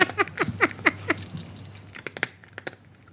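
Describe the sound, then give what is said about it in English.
A cat eating hard dry food from a bowl: a quick run of brittle, crackling bites at a steady chewing rhythm, then a few sharper, separate crunches and clicks, with her little name tag hitting the bowl, as the chewing slows. No one speaks. “It's a cat eating dry food.”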